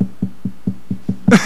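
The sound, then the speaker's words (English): Six quick, evenly spaced hollow knocks on a wooden door, followed by a short louder burst of noise at the end. No one speaks. “No, you go up, knock on the door, you know.”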